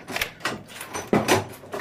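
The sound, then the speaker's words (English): A door being unlocked with a key: a series of metallic clicks and rattles, a louder clunk near the end as the latch gives, and no voices. “Whoever you are, the door is locked.”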